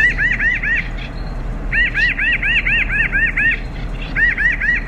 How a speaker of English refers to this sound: It is part of the corvid family, whose members include crows, ravens, magpies, nutcrackers, and jays. And the one called the blue crow is part of that last group. It's the pinion jay.